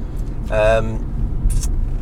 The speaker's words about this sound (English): I hope the audible's good, but if you hear a bit of a ticking noise, it's the car indicator, and if you hear some bumper noise, it's the bumpy road. And otherwise, it's the traffic in the background.